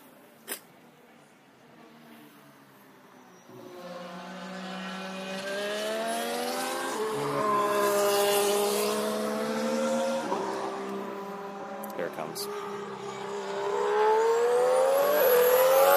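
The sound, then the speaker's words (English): A McLaren Honda Formula One car's high-pitched engine builds from a drone into a loud pass on track, its whine climbing and dropping through several gear changes, with no talking. “Here comes the McLaren Honda. So I will shut up and let you listen to it as it goes by, and you can get a sense of what the car sounds like.”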